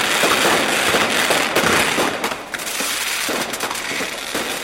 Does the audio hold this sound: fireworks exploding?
yes